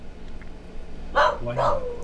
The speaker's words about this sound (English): The dog was in the next room.